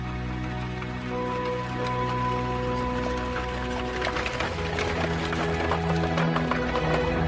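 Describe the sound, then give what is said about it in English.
Horse hooves clip-clop along with a coach's clattering rattle, growing busier and louder halfway through over a steady low rumble, with no one speaking. “Horsepower established the limit of speed, and the fastest means of public transport was the horse-drawn coach.”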